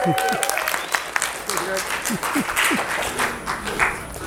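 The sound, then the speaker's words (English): An audience at a movie screening applauds itself steadily for about four seconds, a dense crackle of many hands clapping, with scattered voices calling out beneath it. “Give yourselves a hearty round of applause.”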